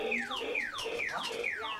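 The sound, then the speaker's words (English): The electronic squawk box on a shiny new bike, ridden by two young kids around a living room, wails in a steady, siren-like pattern, four quick falling high-pitched sweeps repeating about every half second, loud and continuous with no voices. “his two young kids ride around the living room on a shiny new bike with a squawk box.”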